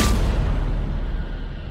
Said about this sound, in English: We hear a swing of a pipe behind them, and the men get knocked out.